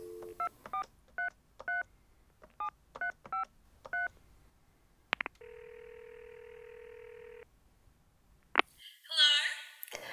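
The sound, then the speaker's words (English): A quick series of electronic keypad beeps as a phone number is dialed for a prank call, each short two-tone chirp in uneven bursts, followed by a click, a steady ringing tone, and another click before a brief noisy rustle. “Well, there's one way to find out. Classic hang-up or refrigerator running.”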